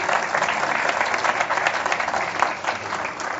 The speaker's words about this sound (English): Turns 90 today. Yeah, round of applause. Well done.